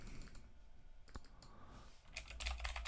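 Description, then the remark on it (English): Computer keyboard keys clack, a single sharp press of the enter key followed by a quick burst of several more keystrokes near the end, with low rumble underneath and no talking. “Press enter on your keyboard. I'm hitting enter.”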